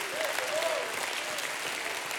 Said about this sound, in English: Somebody, if you're thankful for the grace of God, give God a hand clap.